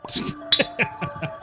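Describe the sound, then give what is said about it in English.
Several bright glass clinks ring out in quick succession, like drinks tapped together in a toast, with a short noisy rustle at the start and faint background murmur. “Cheers to you all. Ooh, there it is. Cheers, cheers, cheers. And this is not Bud Light.”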